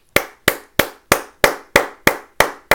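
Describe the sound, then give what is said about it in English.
Nine sharp, evenly spaced hand claps ring out loud, a steady rhythmic clapping like a single person applauding alone, with no talking, given as a round of applause for goaltender Freddie Anderson. “Freddie Anderson, you kept us in game 1-6, and a round of applause for you, sir.”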